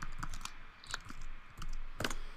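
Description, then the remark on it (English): Quick, irregular clacks of fingers typing on a computer keyboard to pull up a weather alert, a handful of crisp keystrokes in short bursts, fairly quiet, with no one speaking. “Alright, let me pull it up right now on the Zip computer.”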